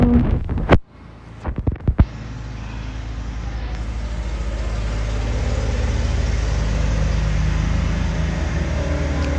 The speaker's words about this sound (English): There's traffic.